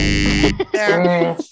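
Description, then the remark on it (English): A loud, harsh game show buzzer blares for about half a second, a single flat rasping tone that cuts off abruptly before a voice follows. “Give us the buzzer there.”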